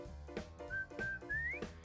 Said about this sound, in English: Ed, Edd n Eddy. I was waiting for the whistle for that one. I knew you were going to play that one.